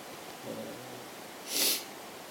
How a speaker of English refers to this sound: Doing some sniffling and some eye watering. That's all we're doing.